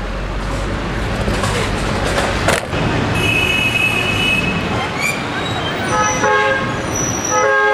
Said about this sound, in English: Better get out of the way before a truck hits me.